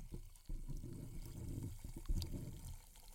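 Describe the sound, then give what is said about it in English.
Store brand club soda pours steadily into a glass for a few seconds, a low gurgling splash with a brief knock partway through; fairly quiet, with no voices. “And I'm about to do that here with my classy store brand club soda.”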